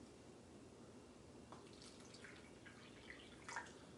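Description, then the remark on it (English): Room-temperature water trickles and splashes steadily into a pink cup up to its second fill line, with a few brighter drips and plinks near the end; no voices, just a soft, continuous pouring. “Okay, so pink cup, add room temperature water to second fill line.”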